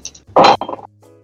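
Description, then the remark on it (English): Dice rattle and clatter onto a hard surface, rolled for a stealth check: a loud burst of clinking, followed by several quicker, softer taps as they bounce and settle, with no talking. “roll for it.”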